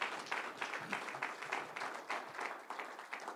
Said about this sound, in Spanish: Démosle un aplauso al Señor porque Él es bueno.